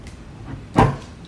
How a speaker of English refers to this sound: All right, let's hear that cork pop this time.